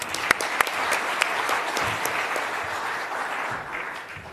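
A room full of people claps steadily for several seconds, a dense patter of overlapping hand claps with a few sharper, closer claps standing out early on, then gradually thinning.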